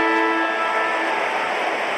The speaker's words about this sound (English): Hardwick handball over the top to Morrison, who has the football when the final siren sounds.